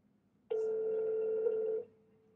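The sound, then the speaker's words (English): A single steady electronic ringback tone from an outgoing phone call, starting abruptly and holding for over a second before cutting off, fairly clear with no talking over it. “So we're ringing him right now.”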